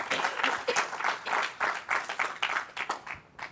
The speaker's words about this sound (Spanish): Den un aplauso al Señor.